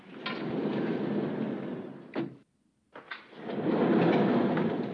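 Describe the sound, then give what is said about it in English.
Heavy elevator doors rumble along their track, stop with a clunk, fall briefly silent, then knock and slide again in a loud, grinding sweep as they open on the first floor below the tarmac. “Dwayne drops his bag and jerks it open as the elevator doors open on the first floor below the tarmac.”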